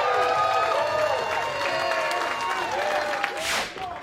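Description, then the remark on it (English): A large crowd at a Southern Honor Wrestling event applauds steadily, dense clapping mixed with cheers and shouting voices, holding loud throughout before easing slightly near the end after a brief, bright burst of noise. “You give yourself a round of applause.”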